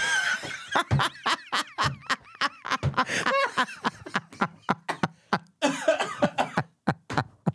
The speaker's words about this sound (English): Oh, my head hurts. I just coughed too hard. I coughed, laughed too hard.